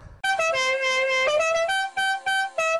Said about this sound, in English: You play the siren. Yes, I'm playing the siren.